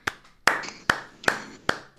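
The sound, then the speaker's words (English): Five sharp handclaps at a slow, even pace, about two per second, each crisp and bright with a quick decay. No voices, and the background is quiet between claps. “I don't really want to clap for that, but I will because I'm a guest.”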